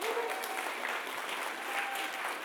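An audience claps and cheers steadily, a dense wash of applause with a few faint whoops rising through it, holding at an even, fairly loud level throughout.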